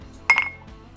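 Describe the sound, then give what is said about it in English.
Two quick, bright glass clinks ring out close together as a group of men toast to health, a sharp chime with a short ringing tail, alone against a quiet background. “Cheers. To you. Cheers. Cheers.”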